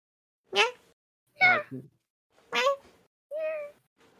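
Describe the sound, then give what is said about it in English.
A person imitates a cat, giving four short, fairly loud meows in quick succession with brief pauses between them, with no other talking. “No meowing!”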